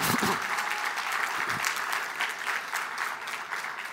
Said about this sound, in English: Look, can I get y'all, come here real quick, the choir. Can I get y'all clapping up for the choir? Y'all can do better than that each and every week.